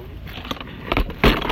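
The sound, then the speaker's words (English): A plastic preschool ride-on toy car being handled, with a few scattered knocks and rattles followed by a louder, sustained scraping clatter toward the end. “I have found me a Paw Patrol car. It's like a preschooler's car.”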